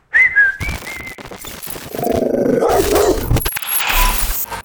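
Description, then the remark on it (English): A quick, high whistle rings out first, followed by a dog barking and snarling loudly for several seconds, with no one speaking. “dog in the yard”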